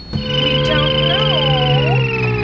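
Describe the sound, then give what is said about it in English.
A cartoon flying car sound effect, the little Jetsons car, played as bumper music: a steady, loud electronic whir with layered tones and a wobbling pitch that swoops up and down, lasting a couple of seconds with no voices. “I gotta get a better sound of that, but I still like the little Jetsons car.”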